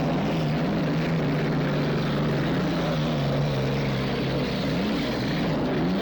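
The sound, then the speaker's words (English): The racing boat My Gypsy's engine roars loudly and steadily as it comes around a rooster tail turn, a deep droning growl with a rough, wide rush over it, and the pitch bends downward near the end as it sweeps past. “My Gypsy coming around, rooster tail turn, taking it very nicely. Cutting it nice, coming in very nice.”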